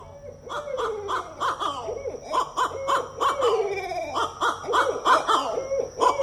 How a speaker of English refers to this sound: Here's the little sounds from YouTube here of owls, barred owls in the woods.